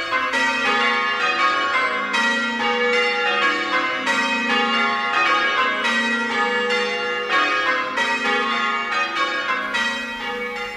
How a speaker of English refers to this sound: The factory closed at 1 p.m. Church bells rang.